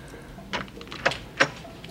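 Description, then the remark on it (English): In a film scene, a door opens with a short scrape and a couple of sharp clacks of the latch or handle, moderately loud, with no voices. “That's when Sammy opens the door to them and realizes they're there.”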